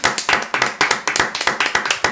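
audience applause

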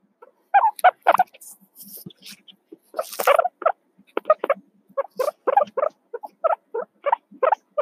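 guinea pig squeaking

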